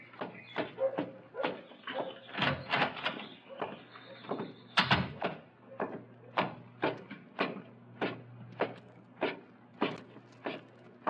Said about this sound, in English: Come on up, mister. Just open the door and come on up.